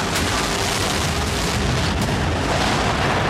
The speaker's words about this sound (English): And then you hear the final countdown from 10. T-minus 10, 9, 8, 7, 6. When it's 6 seconds, the main engines on the space shuttle would ignite.